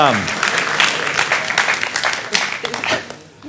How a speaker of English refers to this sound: So the Hope Des Moines staff, give them a round of applause. There they are. I appreciate them.